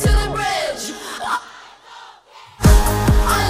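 A large live crowd sings along loudly in unison with harmonic, melodic voices, dips briefly to a quieter murmur, then surges back into full-throated group singing and cheering.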